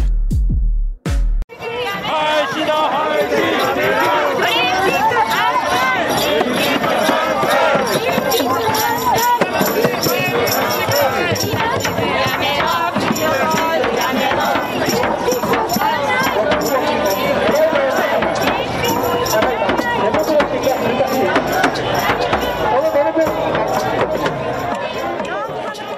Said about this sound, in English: Those are not cheering fans. What you're hearing is the sound of protesters at the opening of the games, because there were more protesters than there were people watching.